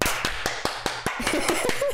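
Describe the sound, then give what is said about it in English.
A quick run of about ten sharp hand claps made to sync a recording, at a steady, brisk rhythm, each a crisp, loud snap, with faint voices murmuring underneath toward the end. “I did extra claps to make sure.”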